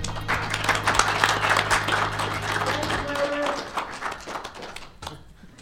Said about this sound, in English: Another round of applause for that.